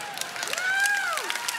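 An audience claps steadily, a dense patter of many hands, while a drawn-out cheer or whoop rises and falls above the clapping, responding to a quoted song lyric.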